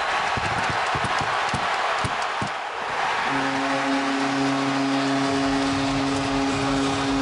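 A hockey arena crowd roars loudly and continuously after a Flyers goal against the Pittsburgh Penguins in Game 6 of the Stanley Cup playoffs, with clattering bangs in the first few seconds, then a steady low, droning tone sounds over the cheering until the end.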